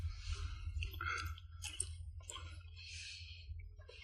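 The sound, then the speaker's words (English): Wet chewing with irregular clicks and squishy mouth sounds as someone chews a Wisconsin sausage during a tasting, over a steady low hum, with no talking. “So do you know off the top of your head while you're chewing, you can answer this, what is that makes it Wisconsin?”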